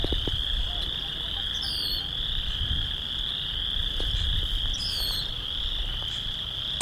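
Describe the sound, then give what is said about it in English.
A dense chorus of frogs croaks steadily in a marsh at Long Point on a windless day, a continuous high-pitched trilling drone with occasional sharper calls, over low outdoor rumble. “Well, as you can probably tell, I'm standing in a marsh area. Really cool sounds of all the frogs.”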